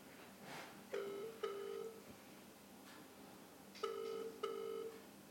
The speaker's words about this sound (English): It's gone really quiet. Well, wait, we hear it listening to a phone ring.